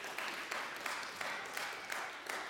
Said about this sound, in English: We have completed Ephesians 1. Now, come on. Thank you. That's a place for some applause, right?